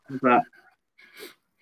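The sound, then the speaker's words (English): A short voiced murmur, then a quick breathy sniff as someone draws in a drink's aroma through the nose, with a faint catch of breath right at the end. “My nose gets used to it, and it gets even more aromatic every time I sniff.”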